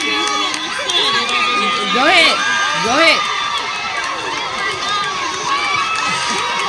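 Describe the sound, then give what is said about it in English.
A lively crowd cheers and shouts continuously, with many overlapping voices and a few loud whooping calls rising above the din, while someone speaks briefly amid the noise. “Okay, baby, when you get done, bitch, we'll all cheer, super senior.”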